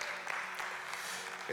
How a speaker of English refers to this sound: Come on and give God a hand clap of praise for that.